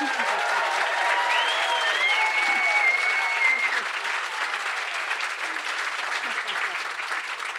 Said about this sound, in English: So I want you to assure them of how beloved and important they are. I want this rousing, stamping, welcoming Byron Bay cheer.